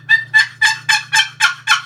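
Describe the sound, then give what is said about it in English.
A series of seven evenly spaced hen turkey yelps made on a call, sharp and raspy, repeated at a steady quick rhythm with a faint low hum underneath; no talking. “You hear the difference? Here's a hen.”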